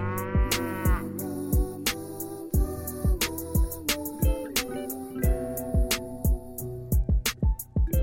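A hip-hop beat plays loud, with punchy kick drums, crisp snare hits and sustained synth tones, and no clear rapping or mooing stands out.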